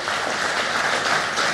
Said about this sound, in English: He is pretty, he's worth applause, isn't he? A new species within our very genus.